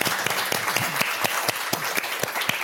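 A small group applauds steadily, their claps dense and overlapping at close range with a few sharper individual claps standing out, a brief round of clapping with no one speaking.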